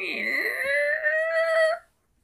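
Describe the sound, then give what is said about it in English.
Double doors creak open outwards in one long, drawn-out whine, its pitch dipping and then rising before holding steady. It is loud, lasts almost two seconds, and stands alone. “Steve opens the door, and it creaks open.”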